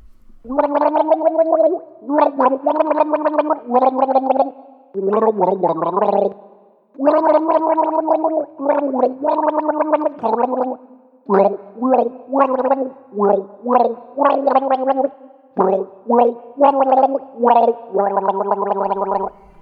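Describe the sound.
Someone gargles a tune, the bubbling, wavering throat tone rising and falling in phrases of a familiar rock melody, loud and sustained with short pauses between bursts.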